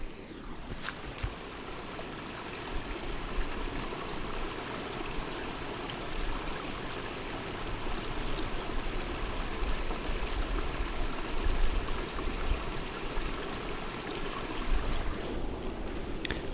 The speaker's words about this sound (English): I'm standing on a path. Either side of me is a stream, what's known in Sussex as this part of Sussex at least, as a gill. And you might be able to hear it running.